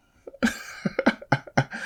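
A rapid burst of harsh, loud coughing, about five or six hacking coughs in quick succession, set off by the mention of actor Adam Sandler's name, with no talking.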